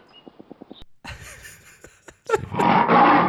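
A panther growl for the Lenoir City Panther: a quick run of short rumbling pulses, then a harsh, breathy snarl that swells into a loud, full-throated roar at the end, with no talking over it.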